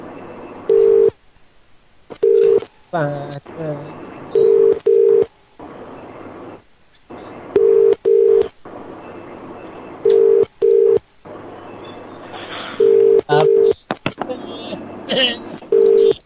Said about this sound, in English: I can hear it ringing. I think like two phones ring.